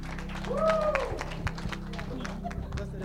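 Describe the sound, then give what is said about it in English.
A group claps for Jesus in a loose, uneven patter of sharp slaps over a steady low hum, with a brief rising whistle-like tone early on and faint voices mixed in. “Clap for Jesus.”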